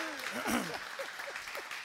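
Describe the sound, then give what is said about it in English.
An audience claps in a brief burst of applause after the announcement that Destiny Church and City Hills Church will merge into one local church, a dense patter of many hands, with a few voices calling out over it. “You can clap.”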